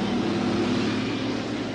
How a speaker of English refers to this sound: Oh, hey, there's a MASH helicopter.